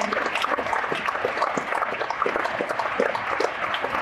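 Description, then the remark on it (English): An audience on stage at an MA business event applauding themselves in a steady, dense patter of many hands clapping, holding at an even, fairly loud level for the whole stretch without letting up. “So please give yourself a big round of applause.”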